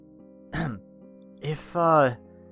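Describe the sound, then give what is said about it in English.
A voice imitates clearing its throat: a short rasping burst, a brief pause, then a rough scrape that slides into a voiced, rising "ahem." Moderately loud, over a faint steady hum. “I cleared my throat.”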